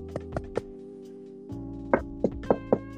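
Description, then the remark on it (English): Two bursts of dull knocking as a person knocks on their own head for "knock on wood": three quick hollow knocks, a short pause, then four more, slightly sharper, all over a steady low hum with no talking. “I just knocked on my head.”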